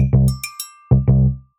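A heel sliding against a surface as someone straightens out their foot makes a low, buzzy, fart-like squeak, coming in a few loud rubbery bursts with a couple of sharp higher clicks between them. No one speaks.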